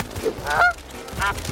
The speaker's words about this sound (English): Goose! Oh, I almost hit that flock of geese.